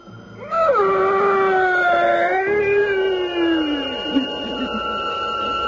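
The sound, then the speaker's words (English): A long, piercing shriek rises suddenly and holds for several seconds, its pitch wavering before sagging downward into a fading wail, as a priest drives a sharpened oak stake through a vampire's body. It sounds alone, with no talking. “And that fearsome shriek, which still sounds in my dreams, rent my ears.”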